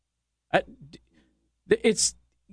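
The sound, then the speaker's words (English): Two short bursts of a fart noise made by a man with his mouth, a sputtering blown raspberry imitating flatulence, separated by about a second of quiet. “He made an audible fart noise, but I don't know if it came across the microphone.”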